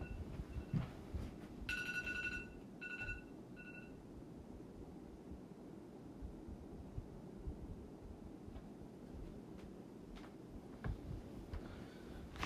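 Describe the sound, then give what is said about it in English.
An electronic alarm goes off in a few short, bright, high-pitched beeps, a quick burst followed by two shorter pulses, over a steady low rumbling background, then falls silent. “Let me, got an alarm going off.”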